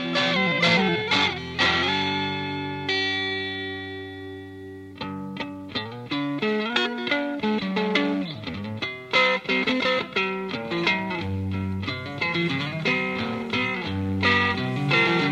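Melodic electric guitar plays flowing, expressive phrases with rich harmonic tone and a touch of effects, mixing sustained bends with quick picked runs, loud and steady with no voices.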